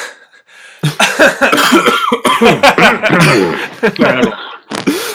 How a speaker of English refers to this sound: Before we jump into the main discussion, I'm going to cough and then edit this out.